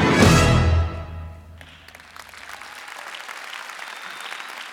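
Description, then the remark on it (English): A loud musical chord rings out and fades over the first second, then an audience breaks into steady, continuous applause at a moderate level that carries on to the end. “And if you just clap enough, he might just come out from here and join us on stage.”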